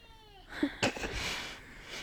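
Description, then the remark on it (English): A male cat lets out a long, drawn-out meow that slides downward in pitch, fairly soft, followed by a couple of brief noisy bursts and a steady hiss. “The length that witch he meows is like actually impressive.”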